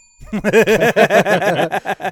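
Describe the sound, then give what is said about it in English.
A bell rung rapidly over and over during a trivia quiz game, about a dozen quick bright dings in a steady rattling burst lasting a couple of seconds, fairly loud. “You don't have to ring the bell,”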